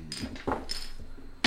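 Small hard dice clatter and tumble down a dice tower in a quick run of bright clicks and rattles, ending in a sharper burst as they land, as players roll for perception in a tabletop game.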